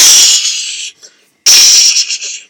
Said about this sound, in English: Tati, Tati, somebody threw a big brick through our window.